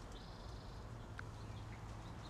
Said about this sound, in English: The birds love it. The birds are chirping in this tree next to me, by the way. And it's raining.